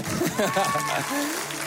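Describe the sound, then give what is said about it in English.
A church audience at Red Rocks Church applauds steadily, a dense wash of clapping heard under a voice speaking and some cheering, holding at an even level throughout. “Red Rocks, at all of our locations, can we keep this applause going while we welcome all of our family at Littleton and Lakewood, Arvada, God Behind Bars, Brussels, Belgium, Austin, Texas.”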